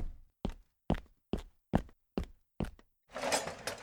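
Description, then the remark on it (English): Seven firm, evenly paced knocks on a door, loud, followed by a sudden burst of broad rushing noise as the knocking stops. “Thank goodness the knocking stopped.”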